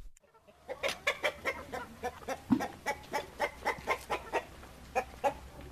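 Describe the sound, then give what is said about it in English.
Chickens in a coop in Zimbabwe cluck in a steady, busy series of short calls, fairly loud, with several birds overlapping in a rhythmic chorus against a low background hum. “She spends her mornings in the classroom and her afternoons in the fields or chicken coops.”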